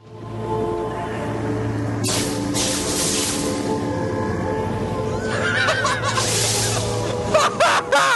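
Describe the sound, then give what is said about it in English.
A long, loud burp into the microphone at the opening of Duncan's quickening scene, amid music and lightning sounds, a low, rumbling, drawn-out belch lasting several seconds, breaking into croaky, squeaky rising bursts toward the end. “So yeah, that is definitely a belch.”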